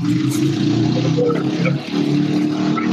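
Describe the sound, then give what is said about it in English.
Loud motorcycle engines rumble steadily as motorcycles roll by, a dense revving drone with a brief dip midway before the roar resumes, no voices over it. “I'm hearing like some motorcycles or something.”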